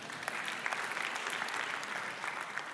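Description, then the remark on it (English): An audience breaks into steady applause, a dense wash of many hands clapping at an even level for a few seconds, with no voices standing out. “You can clap. Go ahead.”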